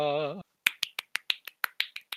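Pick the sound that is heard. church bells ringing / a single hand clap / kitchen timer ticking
a single hand clap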